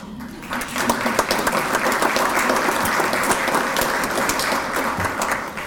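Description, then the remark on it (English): Steady applause from an audience, many hands clapping in a dense, continuous patter that starts almost at once and holds at an even loudness for several seconds. “Boy, that clapping's going to go to his head, you know.”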